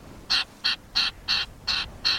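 A Wilson's storm petrel, a tiny dark-winged seabird with a white-banded tail weighing just over an ounce, gives six harsh, raspy calls in a steady, evenly spaced series, each short and fairly loud, with no other sounds around them.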